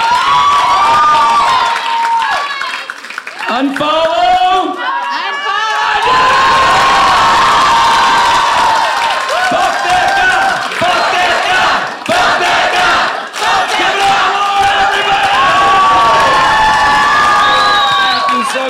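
A crowd cheers loudly and continuously, with overlapping shouts, whoops and high-pitched voices rising over a dense, sustained roar for the full length.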